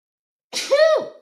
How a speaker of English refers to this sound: I'm going to sneeze. Hold on.